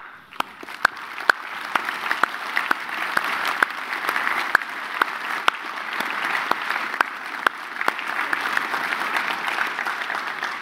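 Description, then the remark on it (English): An audience applauds the women standing among them, steadily for about ten seconds, a dense wash of clapping with sharper individual claps popping out above it, fairly loud and with no voices over it. “We want to applaud for who you are in Christ.”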